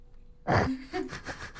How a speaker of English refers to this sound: Yeah, and it's been a while since I've done physical activity. So running from the bus loop here, I'm, like, heavy breathing right now. It's kind of insane.